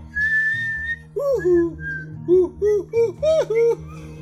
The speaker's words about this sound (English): I can't freaking whistle. You sound like … trying to whistle. I can't either, though, but I wouldn't try.